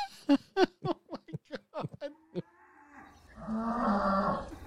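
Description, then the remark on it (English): A rapid series of short, sharp bursts gives way to a long, drawn-out low moo from a cow in a barn, fairly loud, with no talking. “Oh, we've got audio coming from the barn.”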